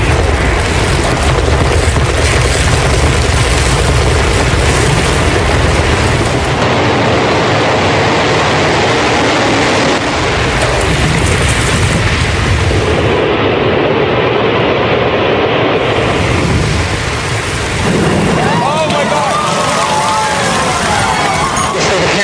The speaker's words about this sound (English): You can see the firemen assembled here, the police officers, FBI agents, and you can see the two towers. A huge explosion now, raining debris on all of us. We better get out of the way!